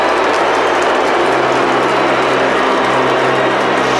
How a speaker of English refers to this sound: an American crowd booing an American family, and you have to say that it does smack of a little bit of racism.